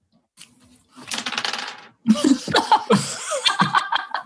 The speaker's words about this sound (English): Sorry, that was me. I dropped my dice.